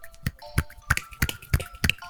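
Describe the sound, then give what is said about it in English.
A single hand is waved quickly back and forth in a steady rhythm, as if clapping with one hand. It makes about six soft whooshing swishes with no talking over them. “And what is the sound of one hand clapping? It's a kind of whooshing. It's a kind of whooshing sound, isn't it?”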